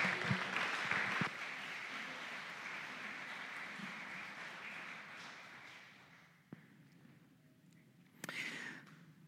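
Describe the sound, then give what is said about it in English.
An audience claps steadily, a dense crackling wash that starts loud and gradually fades out over several seconds, followed by a couple of sharp knocks and a brief rustle. “But let's give him a round of applause, welcome him up,”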